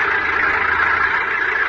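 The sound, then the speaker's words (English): Heavy construction machinery engines run steadily as a construction gang works in a large open field a few miles from a mountain shack, a dense, continuous mechanical roar with a faint low hum underneath and no pauses or voices. “Later that day, a construction gang is at work in a large open field a few miles from the mountain shack.”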